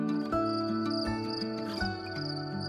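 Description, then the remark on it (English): Crickets chirp beside a flowing stream in a rapid, high-pitched, pulsing trill that carries steadily throughout, layered over low, sustained humming tones that shift a few times. “It was the gentle flowing of a stream, the rustling of the leaves, and the soft chirping of crickets.”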